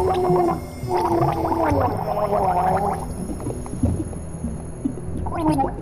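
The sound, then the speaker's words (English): A voice gurgles and chokes through water in the mouth during a drowning sequence, wavering bubbly tones rising and falling in a sustained struggle, pausing briefly before another burst of sputtering gurgles. “I can't understand you with all that water in your mouth.”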